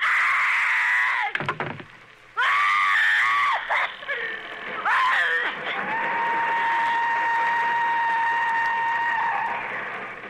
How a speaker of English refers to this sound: Agnes Moorhead screams. And she worked it out so that her scream would be the exact pitch of the whistle of the train